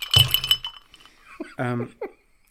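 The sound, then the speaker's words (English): A bright clinking of glass on glass, with ice rattling in a glass of Stolly vodka over ice, rings for about half a second, then fades as a voice briefly murmurs. “We, as Charlie's drinks in the film almost exclusively, we are having a glass of Stolly. I'm going to call it Stolly. Yeah, definitely Stolly. Over ice.”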